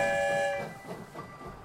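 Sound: train rolling on tracks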